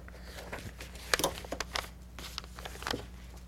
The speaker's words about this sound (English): Got pencils flying around here everywhere.